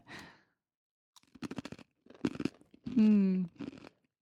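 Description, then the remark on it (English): Loud crunching of buffalo wing flavored thin pretzel chips being bitten and chewed in a few short bursts, with a breathy sigh at the start and a drawn-out voiced hum of approval mid-chew. “Crunchy noises.”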